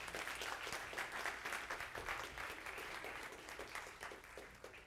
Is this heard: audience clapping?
yes